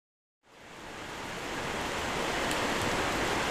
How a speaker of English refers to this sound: This week's meditation will be unguided. Just 30 minutes of the sound of rain on the porch with the white noise of the creek in winter. See if you can simply open your awareness to the sound of the creek until there is only the sound hearing itself.